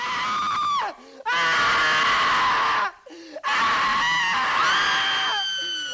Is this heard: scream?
yes